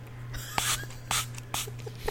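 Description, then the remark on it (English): Three quick hissing spritzes from a small dry-mouth spray pump, evenly spaced, with a faint steady electrical hum underneath and no talking. “I'm seriously having mouth dry right now. Hold on. Okay, I'll do it. I got my spray.”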